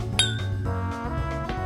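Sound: glasses clinking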